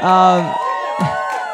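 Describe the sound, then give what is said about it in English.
A church audience cheers loudly to honor a lead pastor, with sustained whooping voices and shouts overlapping in a brief, energetic burst of crowd noise. “Okay, well, we'll just cheer louder for her then.”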